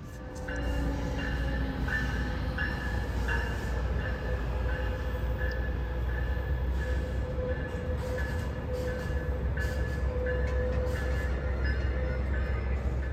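A train rolls along the rails with a steady, loud low rumble, a thin metallic whine running over it and faint clacks ticking through, holding constant for the whole stretch.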